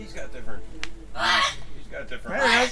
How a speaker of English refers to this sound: That looks like a bird cage. Whose parrot is this? Who's responsible for this bird?